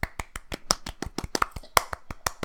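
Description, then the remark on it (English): Soft, polite golf claps: a quick, steady run of about fifteen light, crisp hand claps over a couple of seconds, fairly quiet and with no voices. “Golf claps.”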